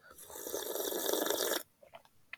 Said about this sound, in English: I'm gonna take a sip of my coffee.